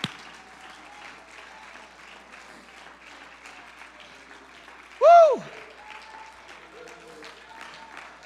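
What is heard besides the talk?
audience clapping hands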